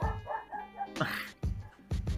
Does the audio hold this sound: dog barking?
yes